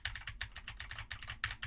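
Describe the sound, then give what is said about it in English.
Rapid typing on a clicky mechanical keyboard with Cherry MX Blue switches, recorded as a microphone test, each keystroke a crisp, bright click in a steady, busy rhythm, with no voices. “Now I am typing on a keyboard with Cherry MX Blues to see how much of my voice versus how much of the keyboard it picks up.”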